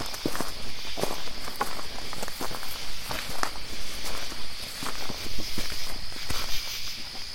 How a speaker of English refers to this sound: The recorder I left out at the cemetery at Pandemonium, you can hear something step as the insects get louder. Yeah. It moves with, it's crazy. Yeah. Now, I'm not, you know, hey, maybe that's an animal, but if it's an animal, it's a clever one.